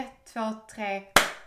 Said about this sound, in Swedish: Fan vad du har blivit bra på att klappa. Men jag tycker det har blivit en sån förbättring på ditt klappande.